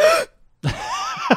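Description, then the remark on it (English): A voice imitates shocked gasping as a person's impression of their own reaction: a couple of sharp, breathy intakes of air separated by a brief pause, fairly loud, with a final quick catch of breath at the end. “A lot of gasps from …. Just gasping.”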